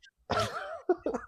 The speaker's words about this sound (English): I'm just sitting here going ham on this bill and my fucking microphone's muted because I had to cough.